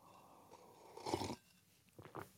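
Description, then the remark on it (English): A wet sip with a slurping rush of air lasting a moment, then two short mouth sounds a little later, with no talking. “Sip of the day. There it is. That was good.”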